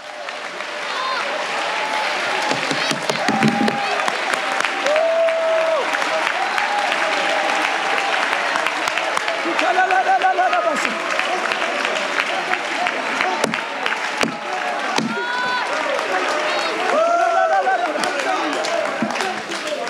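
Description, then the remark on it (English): A church audience claps and applauds steadily during a sermon for the full stretch, a dense, loud wash of hands, with voices calling out and shouting over the clapping. “As you're clapping, you ought to say, God, I thank you for my wife.”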